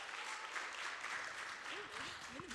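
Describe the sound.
A round of applause from a crowd, steady dense clapping filling the whole clip at a moderate level, with faint voices murmuring underneath toward the end.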